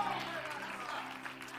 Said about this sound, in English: You balcony folks, y'all need to clap too. Amen.